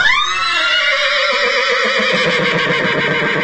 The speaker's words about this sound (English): Okay, insert a horse whinny here.